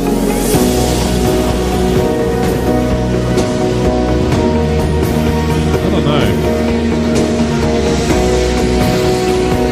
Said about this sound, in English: See, to me it sounds like it's probably four two-stroke engines. Going hard.